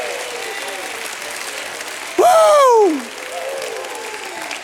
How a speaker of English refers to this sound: Somebody give God a hand clap and a shout of praise.